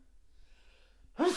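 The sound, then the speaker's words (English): A single sudden sneeze bursts out loud after a second of near silence, with a sharp voiced onset that cuts off abruptly at the end. “Bless you.”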